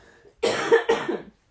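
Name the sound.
coughing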